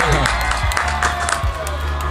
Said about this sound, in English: You actually missed the cheering one more time. That's just for us? Wow. That's for you guys. We recorded that... all day long.